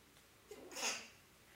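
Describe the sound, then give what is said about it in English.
A single sneeze, fairly faint: a short catch of breath followed by a sharp, hissy burst, then quiet room noise with no talking. “Bless you.”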